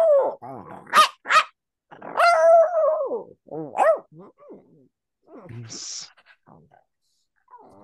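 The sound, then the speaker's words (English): A human voice imitates a dog, producing a string of barks, growls and whiny yelps, with loud bursts separated by short pauses and a brief hiss near the end. “Yeah, I remember barking for that. I've done a lot of bark banks, they call.”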